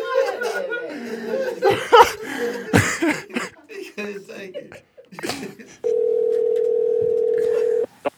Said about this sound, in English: I think our phone got disconnected. I was like, hello?